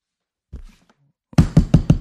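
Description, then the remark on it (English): A rapid series of about six loud, heavy knocks pounds in an aggressive, steady rhythm on a mic placed next to the floor, preceded by a brief soft thump and rustle. “put your mic on next to the floor and let's see what Chris Black knock sounds like”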